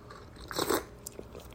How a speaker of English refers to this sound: Just a little sip of my coffee. I actually like my coffee.